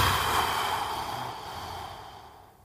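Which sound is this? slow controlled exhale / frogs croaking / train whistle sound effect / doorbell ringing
slow controlled exhale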